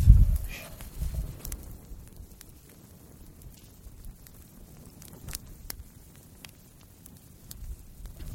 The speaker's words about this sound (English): Ooh, I wonder if you can hear this. Let's see if you can hear the campfire. And then maybe you can fall asleep to it and have great dreams.